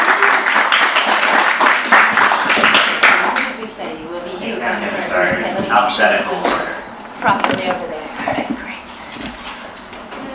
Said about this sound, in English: Let's please give a warm round of applause to our three Object Lesson authors.